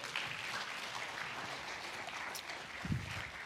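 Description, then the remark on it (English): A small audience claps steadily for a few seconds, a soft, dense patter of many hands with no voices, and one brief low thump near the end, welcoming someone coming up to help the speaker with an illustration. “Can everybody just give a small clap for Mr.”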